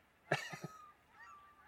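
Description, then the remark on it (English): Geese, mostly cackling and Canada geese on fall migration, honk as they fly over wastewater ponds: one loud, harmonic-rich call followed by two shorter, quicker honks, then fainter calls trailing off against a quiet outdoor background. “And we're in fall migration right now, and so we're hearing tons of geese fly over, and most of them are going to be cacklers and canadas.”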